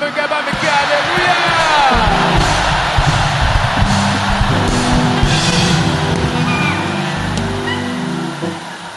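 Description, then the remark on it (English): A large audience of thousands in an auditorium shouts hallelujah together in a loud, sustained roar, many voices overlapping with whoops and yells that rise and fall without a break for several seconds. “I want you to join me in shouting hallelujah.”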